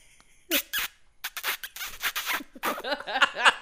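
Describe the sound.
A man imitates long, sloppy kissing: a drawn-out run of wet smacks and squeaky, sucking slurps that rise and fall in pitch for several seconds, fairly loud, with no talking.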